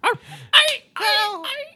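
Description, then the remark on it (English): A person voices a string of dog-like barks and yips, three or four loud bursts with whiny, harmonic tails, some stretched into a drawn-out howling whimper. “Bad dog.”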